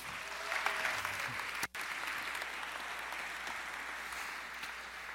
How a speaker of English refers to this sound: We'll give you a huge round of applause